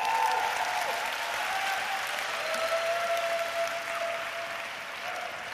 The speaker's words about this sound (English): If you're going to do it, you've got to do it properly. Should we give them a round of applause again?